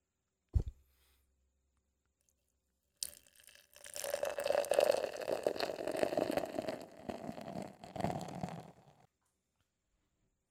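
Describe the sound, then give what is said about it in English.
A sharp click, a short pause, then a steady stream of a drink pouring into a glass for about six seconds, fairly loud, with a bubbly, fizzing texture before it stops. “This is all poured out.”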